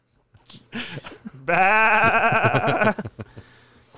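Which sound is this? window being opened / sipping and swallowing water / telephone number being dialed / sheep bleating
sheep bleating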